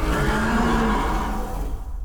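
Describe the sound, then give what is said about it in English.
A person voices a deep, guttural dinosaur-like roar in the manner of the dinosaur roars in Jurassic Park, one loud rasping growl held for nearly two seconds before it trails off. “going to let out a roar the same sort of way that like in Jurassic Park you get that big guttural roar of a dinosaur.”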